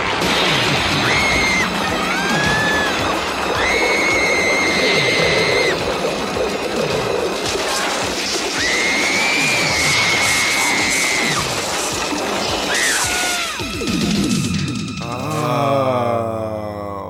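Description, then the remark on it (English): A woman's high-pitched screams ring out in several sustained bursts over a loud, chaotic din of crashing and crowd-like noise, which gives way at the end to a wavering mechanical drone. “So let's play this week's woman screaming.”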